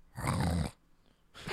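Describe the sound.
A person voices a short, rough, loud growl, an imitation of a TikTok-style growl, lasting about half a second, then a pause before a second growl begins. A human voice imitating an animal growl.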